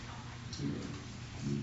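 Steady rain falls throughout, a soft continuous hiss of drops with a faint low rumble underneath and slight swells in intensity, no voices present.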